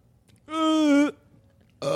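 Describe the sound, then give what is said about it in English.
A loud burp into the microphone, lasting over half a second, deep and buzzy with a steady tone, followed by a brief pause before another throaty sound starts at the very end. “Burping into the mic, dude.”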